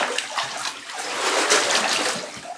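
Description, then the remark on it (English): Water splashes and sloshes in a bathtub with a steady churning wash of sound, broken by a few brighter splashes, continuous for a couple of seconds with no voices. “what if I broadcast from the bathtub?”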